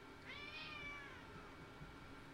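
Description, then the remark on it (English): A cat lets out one drawn-out meow lasting about a second, its pitch rising and then sliding down, heard alone and fairly softly against quiet background noise. “Do you hear this, cat?”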